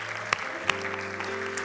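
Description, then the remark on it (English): An audience stands and applauds, at a prayer gathering, those who prayed a prayer inviting God into their lives: a dense, steady wash of clapping, with two sharper claps standing out and sustained low musical tones held underneath. “But everybody, I wonder if we could stand and give a round of applause to all of those who prayed that prayer and joined in inviting God into their lives.”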